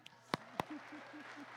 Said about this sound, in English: So would you give him a slight round of applause as he comes?